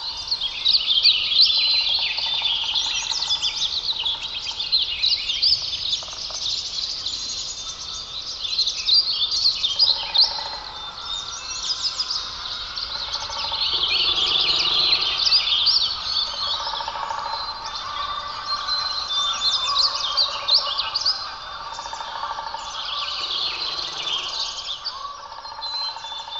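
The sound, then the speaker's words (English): A dense chorus of birds sings and chirps continuously, with many overlapping high trills and tweets at moderate volume, no voices present. “In the voices of birds, we hear augury, portent, prophecy.”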